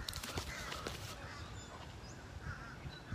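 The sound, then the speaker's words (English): Harsh, overlapping calls from a flock of at least two dozen seagulls, squawking repeatedly over steady outdoor rumble, with a few brief clicks and thumps in the first second. “You can hear the seagulls.”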